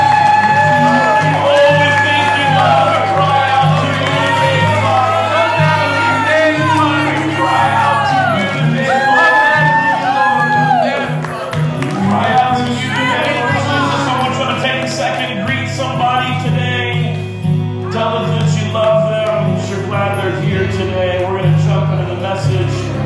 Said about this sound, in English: Come on, can we give him a shout? Come on, y'all can shout for an Ohio State football game. Can you really shout for God this morning? Come on, can you let the zip code hear it?